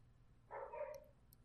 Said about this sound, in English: God, my neighbor's dog. Hopefully you can't hear it because I have a nice mic,